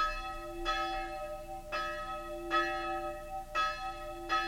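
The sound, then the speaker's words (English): A single funeral bell tolls slowly from a small cemetery outside the Hungarian town of Sopron, five strikes about a second apart, each stroke's ringing hum lingering into the next. No voices are heard. “From the small cemetery outside the Hungarian town of Sopron, the funeral bell knells for old Laszlo Bozo, dead for 3 days.”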